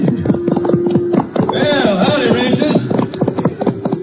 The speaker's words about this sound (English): Oh, here they come now, Jace, around the end of the corral with the horses.